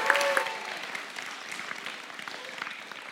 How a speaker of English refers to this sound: Give her a round of applause as she makes her way up.